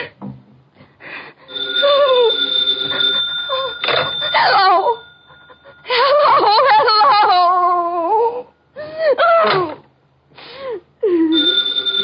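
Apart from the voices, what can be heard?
telephone bell ringing repeatedly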